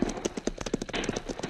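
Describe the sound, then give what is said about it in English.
Horses, among them Diablo and Logo, gallop with their hooves clip-clopping in a quick, steady rhythm of sharp, repeated thuds with no talking over them. “We will let our horses do the rest of it for us.”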